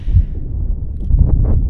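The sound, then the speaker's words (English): Wind buffets a microphone with a steady low rumble and irregular gusty thumps, swelling louder near the end, with brief airy bursts higher up, on a sunny, windy day at a spot above the clouds. No one speaks. “It's beautiful and sunny and windy, as you can probably hear.”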